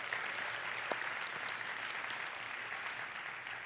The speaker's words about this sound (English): And whether you heard from your Centerpoint band this morning or whether you heard from your regular Sunday morning band, let's just give all of them a round of applause for the incredible work they do.